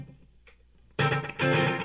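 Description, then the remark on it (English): After a near-silent moment, a loud, distorted electric guitar played through a Chandler Stereo Digital Echo (SDE) delay strikes two heavy chords in quick succession, the second ringing out with a thick, effect-laden sustain. “The Chandler Stereo Digital Echo I think that's what it is, SDE.”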